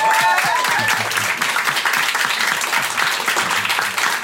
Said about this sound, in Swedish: En applåd.